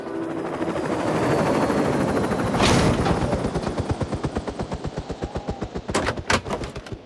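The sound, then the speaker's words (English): Mr. Quick Buck's fancy helicopter arrives at the North Pole, its rotor beating in a steady, rapid thump that swells louder and nearer, with a whooshing engine roar underneath and no voices. “That's a fine, fancy helicopter you have there.”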